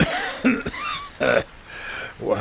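A harsh, raspy cough repeats in several rough bursts, fairly loud, with short pauses between the hacking fits and no talking: a man coughing on the first drag of a cigarette he has just lit.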